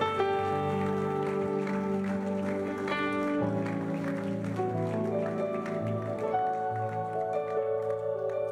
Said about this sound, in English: Why don't we give the Lord another hand clap of praise today? Thank you, mighty God.